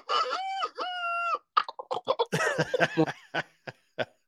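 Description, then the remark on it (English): A man's voice imitates a rooster crowing, starting with two long, strained harmonic crows, then breaking into a burst of choppy, clucking vocal sounds. It's loud, with no other talk. “and I even done a rooster.”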